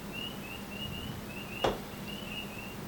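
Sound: frogs croaking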